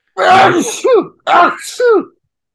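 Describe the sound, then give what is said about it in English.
A person loudly imitates a screaming sneeze twice in quick succession, each a harsh, strained vocal burst ending in a falling shriek. “I'm also a scream sneezer, so therefore I'm also a scream vomiter.”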